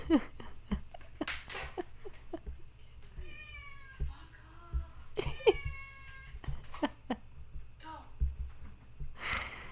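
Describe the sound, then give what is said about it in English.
A cat meows loudly and insistently, with two long, wavering yowls in the middle and shorter cries around them, over a steady low hum and scattered clicks. “Kitty is living and wants us all to know it.”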